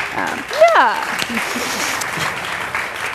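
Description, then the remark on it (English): An audience at a panel event applauds steadily for about three seconds, a dense patter of clapping, with a brief rising voice or cheer cutting through early on. “she lives here, she's a local, so we don't need to applaud for her.”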